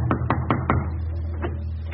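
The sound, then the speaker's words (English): Four quick, firm knocks by a stormtrooper on the front door of a German home in Berlin, Germany, in a steady rhythm, distinct, followed by a pause and a fainter thump, over a low rumbling background hum. “He knocks on the front door.”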